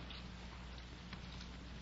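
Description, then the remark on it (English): Rain falls in a soft, steady hiss with faint scattered patters, over a low constant hum. No one speaks. “It'd have to rain today for anyhow.”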